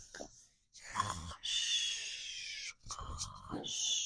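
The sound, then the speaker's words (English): Several voices imitate snoring during a reading of a Noah's Ark bedtime story, alternating rough, snorting inhales with long breathy, hissing exhales in a slow, repeated rhythm, moderately loud. “Noah was the first one to start snoring. Can you guys snore for me?”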